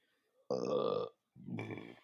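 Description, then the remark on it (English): Two people burp: two loud, drawn-out burps, one right after the other with a brief pause between, each a deep, rumbling belch lasting about half a second. “We burped at the same time.”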